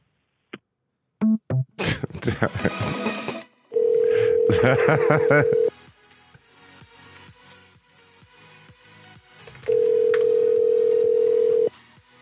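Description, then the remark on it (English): A phone line rings out with two long, steady ringback tones spaced several seconds apart, preceded by clicks and a short burst of rustling handling noise, as a prank caller calls again after being hung up on. “Hi, can you stop picking up the phone, please?”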